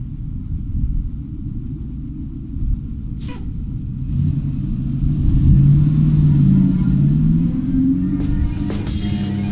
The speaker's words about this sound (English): The bus is there. Let's get on the bus. Let's get on the bus. I'm on the bus. Bye.